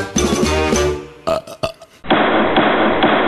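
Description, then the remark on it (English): A loud, drawn-out burp rumbles for about a second, followed by a few short vocal bursts and then a voice talking. “Wyatt Earp, he makes me burp.”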